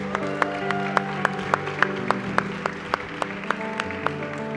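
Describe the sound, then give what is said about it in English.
An audience claps in praise of the Lord in steady rhythm, sharp regular claps about three per second, over sustained instrumental music with held chords. “Come on, let's give the Lord a big clap of praise.”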